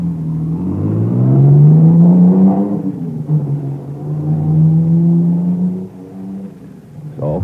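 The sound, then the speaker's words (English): A car engine revs, its pitch climbing, then settles into a steady, rumbling drone as the car, carrying four men, takes off through a village. No voices are heard. “They all pile into the car and take off through the village, supposedly after me.”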